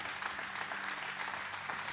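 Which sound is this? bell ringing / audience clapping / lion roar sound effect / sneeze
audience clapping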